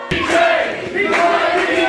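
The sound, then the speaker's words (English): A large crowd cheers and applauds loudly as Mikey J is welcomed to the stage on KGUP Presents, a dense wash of clapping and whooping voices that starts abruptly and stays sustained throughout. “I want you to put your hands together and welcome him to the stage. Big round of applause.”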